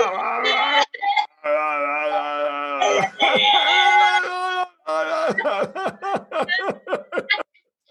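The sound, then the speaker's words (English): A voice playfully imitates a raging, crying toddler with sustained wailing howls, then breaks into a rapid string of short, choppy sobbing bursts. Loud, with no other sounds. “That toddler, it needs to rage. It needs to go, wow, wow, wow.”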